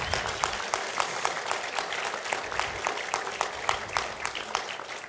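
An audience breaks into steady applause at the announcement of a summer sabbatical for their pastor and his family, many hands clapping in a dense, continuous patter with some sharper individual claps standing out, sustained at an even moderate level throughout.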